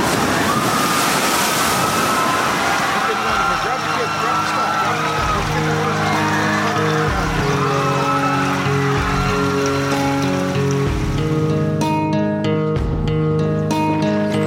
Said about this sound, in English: Hey, look up the river. Big wave coming down this way.